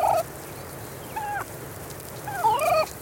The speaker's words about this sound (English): The wild cousins of the centerpiece on many Thanksgiving tables do more than just gobble. Turkeys squawk, chirp when they're poults or chicks, and even softly purr to express contentment in a flock.